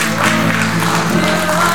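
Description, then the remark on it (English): An audience claps together in a steady, dense wash of handclaps, loud and continuous throughout, with a sustained musical tone running underneath. “Give the Lord a good hand clap if you will.”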